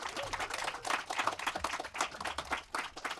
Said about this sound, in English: Unfortunately, Ari Wegner cannot be with us, so let's just give her a huge round of applause.